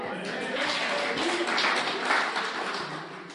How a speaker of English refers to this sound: I hope you're still clapping after I read verse 18.